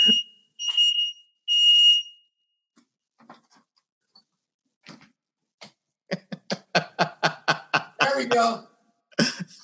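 A fire alarm sounds three loud, shrill electronic beeps in quick succession, followed by near silence with faint rustles, then a run of rapid, choppy, breathy bursts toward the end.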